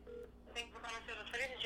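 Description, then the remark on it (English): A voice imitates telephone keypad dialing, giving a quick run of about seven short beep-like syllables that step between higher and lower pitches at a moderate, fairly loud level. “Beep, boop, boop, beep, beep, boop, boop.”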